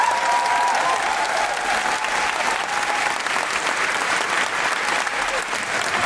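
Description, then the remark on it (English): A large theatre audience at the Edinburgh Playhouse applauds steadily, a dense, loud wash of clapping that holds for several seconds with faint cheers mixed in, applause kept going for Nish Kumar. “Keep that applause going, Edinburgh Playhouse, for the astounding Nish Kumar.”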